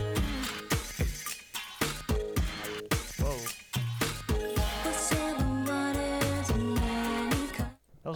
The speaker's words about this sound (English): kind of like glass breaking sound right there. Yeah. But it was still like nice. It wasn't like right abrasive. Somehow she pulled it off.